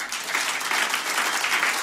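Steady audience applause, a dense wash of many hands clapping at an even, fairly loud level throughout, with no voices standing out.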